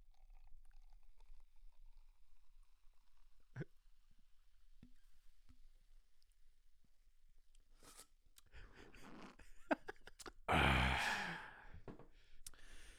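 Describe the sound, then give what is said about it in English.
A pint being poured into a glass: a soft click, then a few seconds of splashy, fizzing liquid noise, ending in a loud breathy exhale. “Let me pour myself a pint.”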